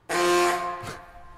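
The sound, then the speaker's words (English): A single loud, brassy goose-call horn honk blares for just under a second, rich and harmonic, then cuts off with a short squeaky tail, leaving quiet. “I'll give you the goose honk.”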